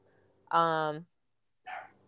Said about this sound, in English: The dog in the background?